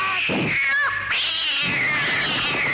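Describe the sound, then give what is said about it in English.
A loud, drawn-out cat yowl with wavering pitch, a cat call made by the character Chen Fu in a film, breaking briefly near the middle before rising into a second long, strained wail. No one speaks. “And the cat call too, and he does that. Oh yeah, the cat call is great.”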